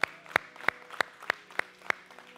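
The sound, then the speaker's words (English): A church audience claps in unison for Jesus after a prayer, about seven sharp, evenly spaced hand claps at a steady beat, fairly loud with no talking. “Somebody give Jesus a hand clap.”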